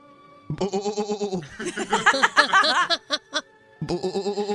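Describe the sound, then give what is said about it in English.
A person imitates a sheep with a quavering, vibrato "baa" bleat, breaks into a burst of laughter, then gives a second wavering bleat, all fairly loud. “A sheep?”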